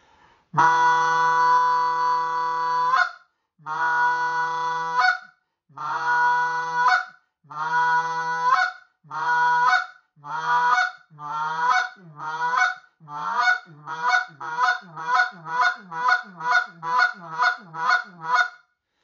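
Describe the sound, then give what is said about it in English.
A goose call blown alone to practise shortening the note, starting with a long, loud honk, then repeated honks that grow steadily shorter and faster through a mid honk until they become quick, clipped clucks. “Now that is the long honk, shortening up, mid honk, and to the cluck.”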